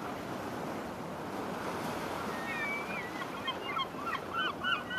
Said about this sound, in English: You notice little waves coming closer.